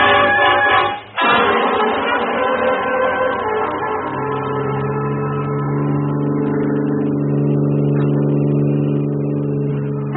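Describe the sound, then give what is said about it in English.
A car engine starts up loudly and revs, then settles into a steady, sustained drone as the vehicle pulls away and keeps running, continuous with no voices. “Easy with that rod and hang on. I'm driving.”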